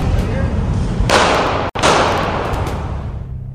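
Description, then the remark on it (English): Two sharp gunshots crack about half a second apart over a loud, noisy street background with crowd murmur, followed by a lingering rumble of commotion; the shots kill a Trump supporter on the street, fired by an Antifa activist. “Now, those gunshots that you heard were a Trump supporter being executed on the street.”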